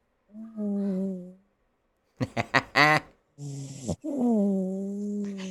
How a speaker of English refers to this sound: by the way, my dog is snoring. I don't know if you guys can hear her. Here, let me see if I can give you some doggy ASMR.